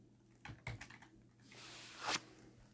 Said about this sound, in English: Save as, we're gonna go. Keyboard. C.